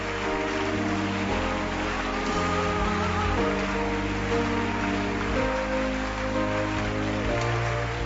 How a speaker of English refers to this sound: Keep clapping your hands. It is going to make a sound in somebody's ear. The person will respond right now. You watch. As you clap your hand, somebody is going to leave his seat and join us right now. Keep clapping.